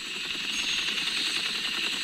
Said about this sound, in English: I hear the helicopter.